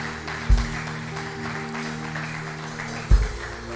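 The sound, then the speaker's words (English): A church audience applauds steadily, many hands clapping in a dense, continuous wash, with a low steady hum underneath and two brief low thumps. “Come on, would you give them a round of applause?”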